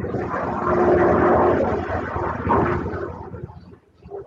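A military helicopter on an end-of-month flyover near Oak Harbor thunders low overhead, a loud, dense engine roar that swells, holds for a couple of seconds, then fades away. No one speaks.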